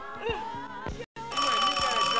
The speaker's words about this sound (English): Hey, man, get the phone. Answer the phone!